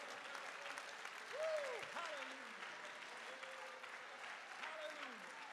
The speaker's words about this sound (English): Let's clap our hands and praise God for that today.